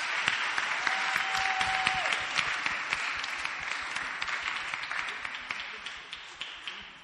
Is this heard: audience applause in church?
yes